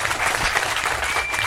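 Steady, dense applause from a live audience, many hands clapping at a constant loud level with no pauses, a broad crackling wash throughout.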